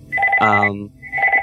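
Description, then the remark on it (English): A father's phone's electronic ringtone trills in a quick repeating pattern, fairly loud, briefly overlapped by a man's voice talking in the middle before the ringing resumes. “They're calling. It's them. No, it's my dad's phone.”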